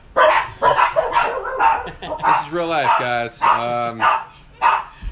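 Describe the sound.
Dogs bark and yelp in a rapid, excited series of loud calls, some drawn out into whiny howls, as a woman comes in, while a man speaks over the commotion.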